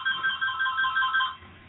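phone ringtone ringing

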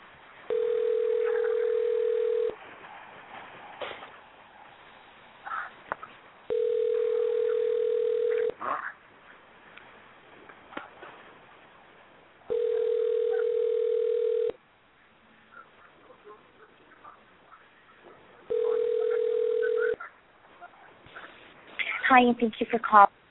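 telephone ringing unanswered

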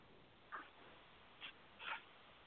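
dog making a noise

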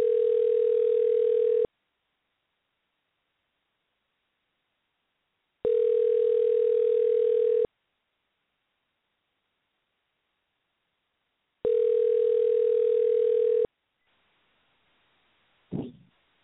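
telephone dial tone

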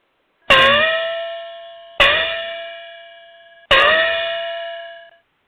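gong being struck

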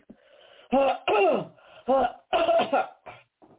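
coughing

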